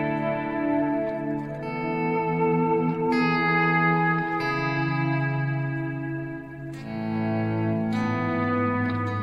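A sustained, effect-laden instrument chord shifts through several changes, its tape-style echo repeats smearing together into a dense, reverberant wash. No voices.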